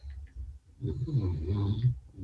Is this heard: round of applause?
no